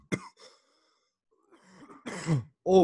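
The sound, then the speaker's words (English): A person coughs after taking a big hit of cannabis smoke and blowing it out of an open window: a sharp single cough, a brief pause, then a rough, hacking run of coughs ending in a strained, throaty burst. No one speaks. “He slides the door open and he's blowing. He's coughing.”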